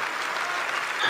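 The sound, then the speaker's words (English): A large crowd of thousands of people applauds in a dense, continuous wash of clapping, steady and fairly loud throughout, with a faint lift of cheering near the end and no speech. “And the crowd goes wild, thousands of people.”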